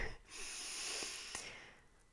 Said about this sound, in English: So maybe before we carry on, let's just take a quick pause and take a deep breath.